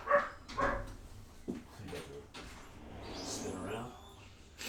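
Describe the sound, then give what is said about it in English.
A dog lets out two sharp barks right at the start, then quieter yips and shuffling noises follow, with muffled voices faintly in the background. “I don't think either of us were bothered by the dog.”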